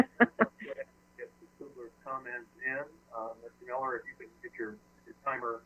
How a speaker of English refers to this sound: I think you have the Vimeo video going as well as Zoom, so we're hearing an echo in the background from one to the other.